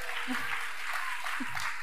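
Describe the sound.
Steady audience applause, a dense, even patter of many hands clapping at once, with a few faint voices or cheers mixed in beneath it.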